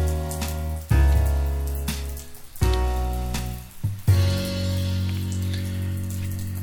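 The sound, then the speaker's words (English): Steady rain patters down continuously, a dense hiss of drops, while deep sustained tones swell up three times beneath it and linger. “And let's say goodbye to the rain.”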